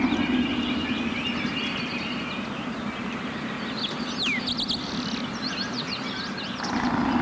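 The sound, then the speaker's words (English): An infinite freeze reverb effect holds a dense, unchanging wash of sound at a steady level, with smeared bird-like chirps and whistles floating over a thick low drone throughout. “Here's infinite freeze. Infinite freeze, everybody.”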